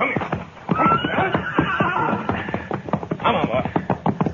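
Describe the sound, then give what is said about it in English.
A gray horse whinnies loudly while hooves clip-clop in a steady, busy rhythm, with a second high whinny rising near the end amid shuffling, stamping movement. “All right, you take the gray horse,”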